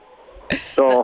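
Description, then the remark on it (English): Two quick hen vocalizations in a henhouse while someone picks up eggs: a sharp, raspy squawk followed by a louder, drawn-out cluck, over faint low background noise. “I think I hear the chickens in the background. Yeah, I'm in there picking up eggs right now.”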